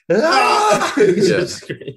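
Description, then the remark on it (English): A long, drawn-out yawn with a moaning, voiced quality, fairly loud, lasting about two seconds before tapering off into a few softer breathy sounds. “And that'll probably stop the yawn.”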